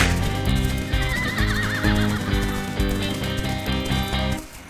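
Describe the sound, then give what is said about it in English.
A voice imitates a horse's whinny in a demo version of a jingle, a quavering neigh rising over a loud, steady musical backing with a bouncy beat, with no speech. “I'm the horse too.”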